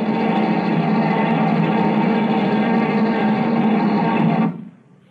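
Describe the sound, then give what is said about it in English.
A buzz bomb's harsh, rasping engine drones loudly and steadily for several seconds, then cuts out abruptly, leaving only a faint fading hum; launched at 1 o'clock at a hotel in Mulberry Street, it fell short and hit Rodney Place. “Time for tonight's buzz bomb.”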